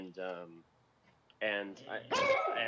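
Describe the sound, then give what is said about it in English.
An excited dog lets out a few loud barks in quick succession, with a short pause after the first and the last one drawn out and whiny. “And my dog is really excited for you to get started on that journey or continue that journey.”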